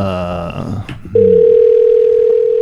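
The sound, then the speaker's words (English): After a brief muffled jumble of sound, a loud, steady telephone dial tone comes in and holds unbroken to the end, clear; an outgoing phone call being placed. “Let's get them on the phone.”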